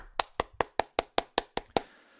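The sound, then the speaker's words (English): A quick, steady run of nine hand claps in congratulation at an even, brisk pace, each a sharp crack that fades fast, with no voices. “Clap it up.”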